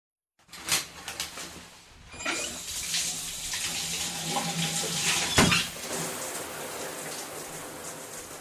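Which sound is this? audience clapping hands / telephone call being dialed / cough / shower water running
shower water running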